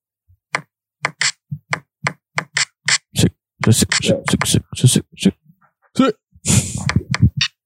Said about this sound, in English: There's an actual snare. Oh, the kicks is pretty good. With a beat pad on his phone.